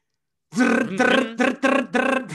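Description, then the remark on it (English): A voice imitates an air-powered impact wrench tightening the nut on an oil pan, with five buzzy, loud bursts in a quick stuttering rhythm, the first one longest and the rest short, clipped and evenly spaced. “As they, you know, with that air drill, like not air drill, wrench with that air powered wrench.”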